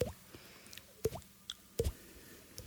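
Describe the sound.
A voice imitates water drops with the mouth, making three sharp, wet plinks about a second apart, each with a quick rising pitch, fairly quiet against a faint background.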